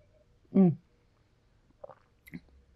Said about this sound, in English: So I am sitting here with this book in front of me and a drink in my hand. The drink that I made this evening, and I'm going to take a sip here.